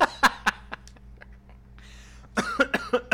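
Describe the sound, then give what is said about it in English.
A person coughs in two harsh clusters, several rapid hacking coughs at first, a brief quiet pause, then another run of raspy coughs. No talking. “I'm coughing too much.”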